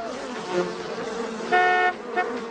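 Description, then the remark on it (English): A car horn blares in two short honks, a longer blast followed by a brief toot, as a couple making out in the car bump into it, over a steady buzzing hum of bees on a nearby billboard. “So they're bumping into the horn as they're making out, which is disturbing the nearby bees who are attached to a billboard there.”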